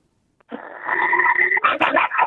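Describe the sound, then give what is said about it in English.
A person from Hobart imitates a growling dog: a sustained, raspy snarl rising from silence, building into harsher, choppier growls near the end, loud with no other talk. “give us your dog”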